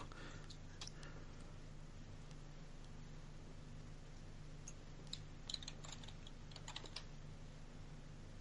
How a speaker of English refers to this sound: I hear you typing over there